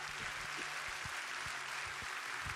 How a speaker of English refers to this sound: Let's give the choir a rousing applause.